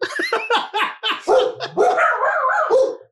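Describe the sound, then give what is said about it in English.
A dog barks in a living room in a quick run of sharp, loud barks, then lets out longer, whiny yelping barks, with no one talking over it. “The only book club that involves throwing treats at dogs into the living room.”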